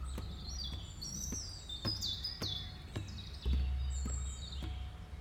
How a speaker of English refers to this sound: Hope you enjoyed the birdsong.